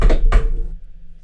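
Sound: knocking on wood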